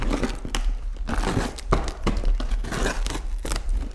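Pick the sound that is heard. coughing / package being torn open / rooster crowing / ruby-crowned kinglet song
package being torn open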